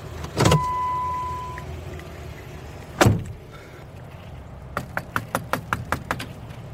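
Two heavy thuds give way to a quick, evenly spaced run of about eight sharp raps on a screened porch door, with a low steady rumble in the background and no voices.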